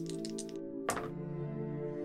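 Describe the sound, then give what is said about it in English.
A short rattle of small clicks followed by a single clattering knock as dice are rolled and land on a table, heard over a steady background music drone. “Before I do that, because, you know, this is a show where we like to roll dice and determine things randomly, there is a question that has to be asked.”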